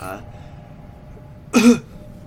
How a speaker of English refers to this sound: I don't want to talk, so maybe I pretend I have a cough or something.